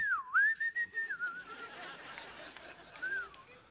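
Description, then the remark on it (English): Someone whistles in imitation of birdsong, a short warbling phrase with sliding pitch, then a brief second trill, set against a faint murmur of room noise and chatter. “Like birds are out whistling.”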